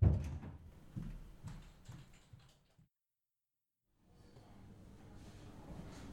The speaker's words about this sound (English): St. Genevieve's Hospital was bustling as Ray and Cindy stepped through the automatic doors several days after finding Hawthorne.